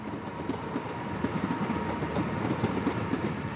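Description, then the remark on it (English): A train rumbles steadily over an old railway arch in an old industrial area of Bristol, its wheels clattering in a fast, irregular clickety-clack over the rails, the sound heavy and reverberant as if heard from beneath a brick arch. “Within an old railway arch in one of Bristol's old industrial areas is a startup who are pioneering new technology that it hopes will provide some of the solutions.”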